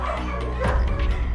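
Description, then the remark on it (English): Dogs bark inside a place where dogs are kept, in a loose run of short, fairly loud woofs and yips, the barks tumbling over one another with no speech. “Right, okay, they bark in there.”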